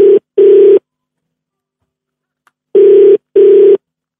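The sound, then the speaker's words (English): A telephone ringback tone on an outgoing call to a DJ: two pairs of short buzzing rings separated by a long silent gap, steady and clear with no one talking. “All right, it's ringing.”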